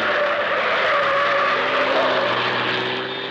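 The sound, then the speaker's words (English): The Green Hornet's car roars past at speed, driving right past a group of men, its engine a loud, steady drone mixed with the high whine of skidding tires, easing off slightly at the very end. “Drive right past them, Cato.”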